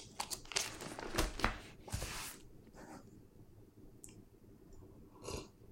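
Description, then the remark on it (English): Thin Bible pages are flipped while turning to Mark chapter 5, in a quick burst of crisp, papery flutters during the first two seconds, followed by a few softer, scattered rustles and one last brief swish. No one speaks. “Turn with me really quick to Mark chapter 5.”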